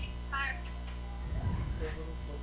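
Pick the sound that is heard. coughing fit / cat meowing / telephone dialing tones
cat meowing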